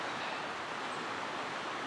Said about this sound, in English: It's come from sort of Crickhowell direction, and it sweeps down quite gently, relatively two big bends, and then it does this really sort of sharp bend and narrows, and there's white water here.